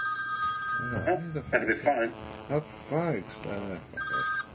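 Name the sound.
telephone ringing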